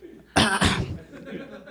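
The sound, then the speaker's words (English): A short, light cough, two quick breathy bursts in succession, with no talking, followed by quiet low background noise. “Cough slightly to awaken your pleasure bot and enjoy.”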